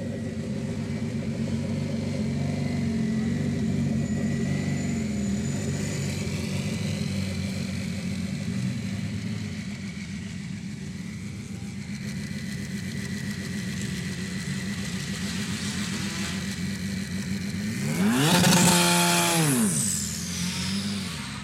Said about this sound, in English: That's the sound of a Glickenhaus Le Mans car making its way onto the hill climb here at Goodwood.